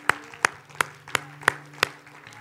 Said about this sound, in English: Come on. Let's stand up and let's give the Lord a hand for what he's done in our lives.